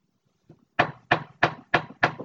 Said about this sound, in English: I knock on the door.